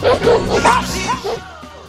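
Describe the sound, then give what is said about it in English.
Several dogs bark and yip loudly in quick, overlapping bursts for about a second, then the noise fades into a quieter tail. “Stand up and bark for it.”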